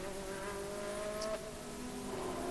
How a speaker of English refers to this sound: It's the variety that really does appeal, doesn't it, with these GT3 cars. And four cars in a row, four very different cars, with a fifth a little further up as Perfetti looking around the outside of the Aston Martin. No way through there.